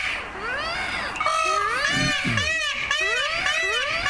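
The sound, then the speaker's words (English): Several peacocks in the Los Angeles County cities of Arcadia, Pasadena and San Marino wail loudly and repeatedly, their piercing, high-pitched calls rising and falling and overlapping one another like crying babies, with no talking over them. “If you haven't had the pleasure, peacocks reliably sound off at dawn with a noise so piercing... Some neighbors describe it as babies being tortured.”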